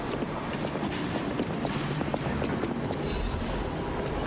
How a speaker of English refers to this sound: You don't hear those footsteps, bro?